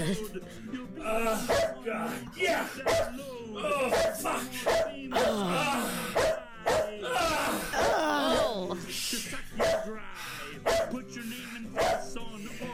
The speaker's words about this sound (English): Oh, my God, the dog.